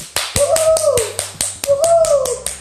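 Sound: clapping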